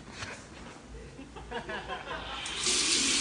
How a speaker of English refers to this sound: That's the water going on. I don't think she heard it.